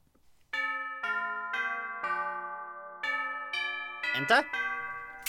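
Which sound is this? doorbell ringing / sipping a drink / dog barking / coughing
doorbell ringing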